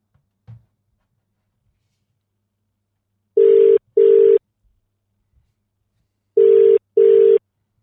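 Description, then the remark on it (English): A telephone ringback tone sounds twice as a double ring, two short buzzy bursts, a pause of silence, then two more, as a call is placed to bring a guest live on air. A faint click comes first; there is no talking. “Let's get Killer on the phone.”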